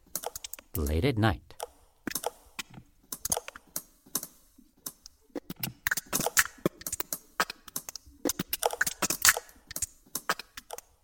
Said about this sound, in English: Rhubarb makes those crackling sounds at night when it grows. That's an enormous warehouse full of rhubarb.